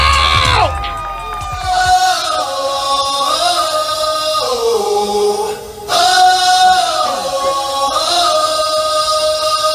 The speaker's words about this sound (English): I need y'all to make some noise real loud. Start clapping now. Right now. Y'all give it up for …. Let's go!